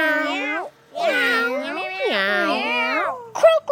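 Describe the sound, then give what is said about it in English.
A voice imitates a cat, drawing out three wavering, rising-and-falling meows in a row, fairly loud, then a brief clipped sound at the end. “meow like a cat. Meow.”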